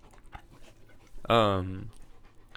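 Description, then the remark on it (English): A dog named Arlo breathes heavily, with one loud, drawn-out, slightly voiced pant lasting about half a second against a quiet background. “You guys like the sound of Arlo breathing?”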